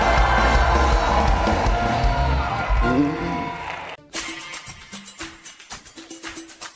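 A large audience at a worship service roars with shouts and screams, loud and dense for several seconds, then fades into scattered claps and cheers with a few voices calling out.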